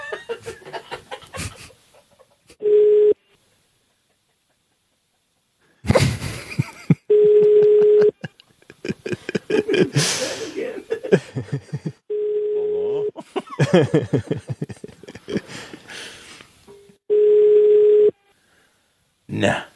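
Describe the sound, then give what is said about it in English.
An outgoing phone call's ringing tone sounds four times at steady intervals as the caller rings again, each a clear, even electronic burst about a second long, with people talking between the rings. “All right, I'm ringing again.”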